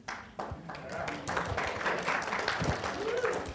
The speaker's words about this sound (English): The Americans in the room, if you could just help us with the clapping. We don't always know when to do it. So just get us going and we'll join.